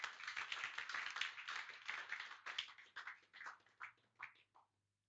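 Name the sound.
audience clapping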